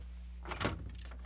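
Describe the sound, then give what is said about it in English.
A single short door sound, a brief rattling knock or thunk as a door is moved or shut, over a low steady hum with no one talking. “Okay, let me exit stage left or stage right. I'll go over by this door here.”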